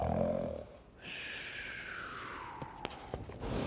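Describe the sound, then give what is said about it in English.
A bear snoring: a low rumbling snore gives way to a long, high whistling exhale that slowly slides downward, heard alone. “Mouse sips wee slurps, hare burps big burps, but the bear snores on.”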